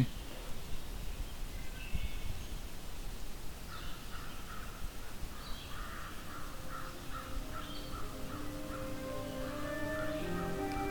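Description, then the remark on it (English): A crow, about ten times farther away than a singing flycatcher yet louder, caws repeatedly in short harsh bursts over steady outdoor background noise, with faint birdsong and a brief murmured word. “In fact, there's a crow about 10 times further away right now that's louder than it is,”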